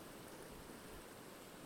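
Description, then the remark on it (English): Water runs steadily in a stream, a continuous soft rushing and babbling that stays even throughout, heard alone without any voices. “look at this water. Don't take my word for it. You have to come here to look at the water.”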